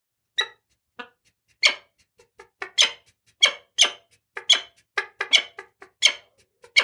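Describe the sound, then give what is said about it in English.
A peregrine falcon calls repeatedly, a rapid series of about fifteen harsh, raspy, high-pitched shrieks in uneven bursts, loud and alone with no talking. “Some can even be on mountain cliffs, like peregrine falcons.”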